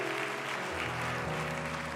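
A church audience applauds steadily as a hand clap of praise for people standing up, a dense wash of many hands clapping at an even level throughout, with a low sustained organ-like tone underneath and no voices standing out.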